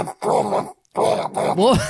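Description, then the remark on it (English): A voice mimics a harshly distorted piano heard over a Zoom call, making gruff, buzzing vocal bursts in three chunks, ending with a wavering, sliding tone that drops sharply in pitch. “It was just hyper distorted. I think because it was on the piano or something.”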